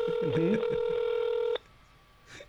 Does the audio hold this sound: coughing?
no